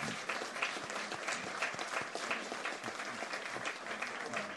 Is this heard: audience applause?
yes